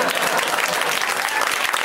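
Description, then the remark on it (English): Steady, dense applause from an audience, many hands clapping at once in a continuous bright patter at fairly even loudness throughout, with no voices standing out. “Okay, well then just clap, I think.”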